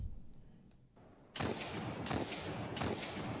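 Three heavy, booming gunshots from a Hawk Moon hand cannon in a video game ring out at a steady, unhurried pace, loud, each followed by a lingering rumble. No one speaks.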